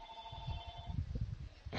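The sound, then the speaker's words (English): A phone rings with a steady electronic tone for about a second, then cuts off, leaving low background rumble and a burst of noise at the end. No one speaks. “oh, and here's my phone ringing.”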